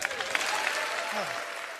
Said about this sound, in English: Scalise, with the aid of crutches, walked into the floor of the House of Representatives, he was met with a standing ovation from both Republicans and Democrats.